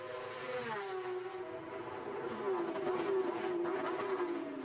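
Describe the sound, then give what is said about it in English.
GT sports car engines drone steadily on a race track on qualifying day at an NTT IndyCar Championships event, their pitch rising and falling as the cars circuit the track, with a broad roar that swells slightly midway and no talking. “Hope you're enjoying the sights and sounds of these fantastic GT sports cars.”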